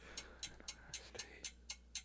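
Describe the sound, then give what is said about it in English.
A timer ticks in a steady, evenly spaced rhythm, about four sharp, bright clicks per second, standing out clearly over a faint low hum with no talking. “This timer is throwing me off. It's so loud.”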